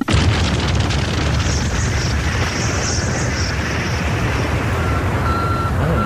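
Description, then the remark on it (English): An old MTV channel ident opens with beeping like a truck reversing, buried in loud, constant rumbling and crackly noise, with a thin steady tone surfacing near the end. “It sounds like a truck reversing at the start.”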